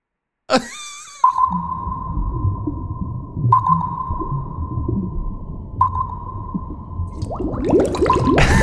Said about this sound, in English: No, but let's play the bubbles.